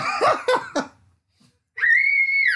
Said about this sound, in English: Okay, that scream was not him playing with the paper shredder. It was because I moved him away from the paper shredder. So nobody thinks that my kid just lost a hand.